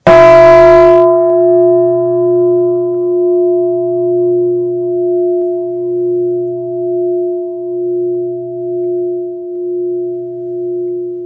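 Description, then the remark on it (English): A single deep bell strike, made by holding a striker at an angle and letting it fall against the bell, with a bright metallic onset, then a long sustained ring that slowly fades with a gentle pulsing wobble, heard alone with no talking. “He said, you hold the striker at an angle and you just let it fall against the bell.”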